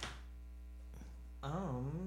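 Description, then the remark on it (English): A steady, low electrical mains hum drones without a break through the whole clip, fairly prominent, with a louder wavering tone joining over it in the final half-second. “Dude, that humming's so fucking annoying.”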